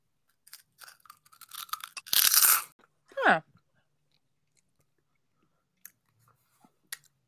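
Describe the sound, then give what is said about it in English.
Crunching of sour cream and onion potato chips: a run of small crisp crackles, then one loud, dense crunch, followed by a brief sliding vocal sound and a few faint clicks of chewing. “This is going to have a good crunch.”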